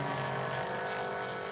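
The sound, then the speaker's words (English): The race leaders' cars, including Mark Siegel's Peregrine Porsche, roar past with engines in a steady, loud drone with sustained, buzzing harmonic tones, holding level throughout the short stretch with no voices. “Well, that was Mark Siegel, actually, that the leaders just gone by in the car barn with Peregrine Porsche, not the BGB car.”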